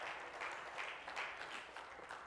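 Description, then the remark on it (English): An audience clapping their hands together in praise during an evening church service, a dense, steady patter of many hands with a loose rhythmic pulse, fairly soft and continuous throughout, with no voices standing out. “Oh, let's clap our hands and praise him tonight.”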